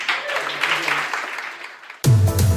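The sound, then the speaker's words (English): A small group of people in a radio studio of the show Moncrief on News Talk claps steadily for about two seconds, a dense patter of hands at moderate volume, before it cuts off abruptly and a man's voice begins speaking. “They're clapping now.”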